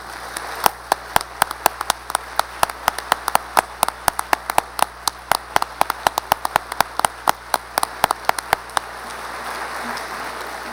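A crowd at the Humanities Nebraska governor's lecture on the humanities applauds steadily for several seconds to honor a man's leadership and contribution to the humanities in Nebraska, a dense patter of many hands clapping with sharp individual claps standing out, then the clapping thins and fades near the end. No one speaks.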